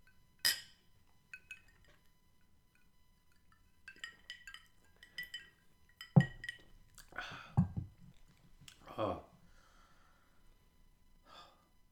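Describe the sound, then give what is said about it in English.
Glasses clink together in a toast, a few light, bright chimes scattered over several seconds, followed by breathy gasps and exhales as drinks are taken. “Here's to those people. May their suffering not last forever, and may they get the help that they need. Cheers.”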